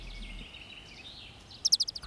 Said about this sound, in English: Young Corey follows the sound of chirping.